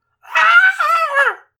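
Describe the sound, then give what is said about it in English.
A single high-pitched shriek from one voice, loud, lasting just over a second with a wavering pitch that dips near the end, alone with no talking around it. “I screamed in a weird high-pitched shriek.”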